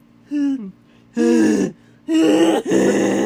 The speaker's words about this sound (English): She was squirming more now, letting out soft gasps and beautiful moans.